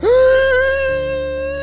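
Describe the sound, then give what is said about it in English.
A single long, drawn-out gasp from a person demonstrating how to gasp, voiced and steady in pitch, starting loud and tapering slightly as it holds for nearly two seconds with no talking. “That's as long as I can gasp.”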